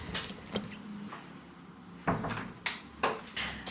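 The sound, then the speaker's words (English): A door is pushed shut: a soft scrape and knock, then a firm thud and a couple of sharp latch clicks, against a faint background hum with no talking. “I need to close the door because Monsters, Inc. is blaring through from the living room where Dad's watching it.”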